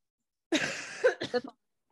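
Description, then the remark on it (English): A short burst of coughing mixed with throat clearing, caused by smoking weed: a rough raspy rasp followed by two quick harsh hacks, fairly loud, with no talking. “I can't stop coughing.”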